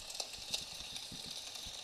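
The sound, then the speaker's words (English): A quiet, steady wash of watery hiss with soft, irregular low thumps underneath as a boat with a running engine moves across water. No voices are heard. “Land peasants. Fear my boat.”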